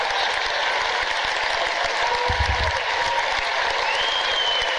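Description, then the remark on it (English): Steady, dense audience applause with many hands clapping at once, a loud continuous crackle that holds an even level throughout without fading. “Sorry for the extraneous applause there.”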